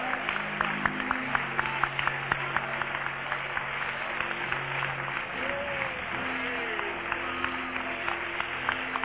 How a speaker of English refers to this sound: Let's just applaud the great heavenly God, our Lord Jesus Christ.